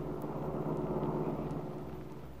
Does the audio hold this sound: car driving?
yes